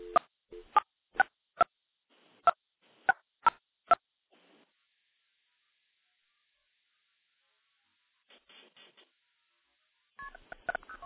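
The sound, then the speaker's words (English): A quick run of about eight sharp touch-tone dialing beeps in an irregular rhythm, dialing from a telephone switch in Alabama into a Project MF box, then silence, a faint muffled burst, and more tones on the line at the end. “Now we're going to dial into my Project MF box.”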